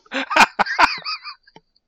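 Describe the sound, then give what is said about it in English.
A wet fart sound effect plays from an Alexa smart speaker: a quick run of bubbly, sputtering bursts that trails off with a last small pop, with no talking over it. “Yeah, a wet fart. That was a wet fart.”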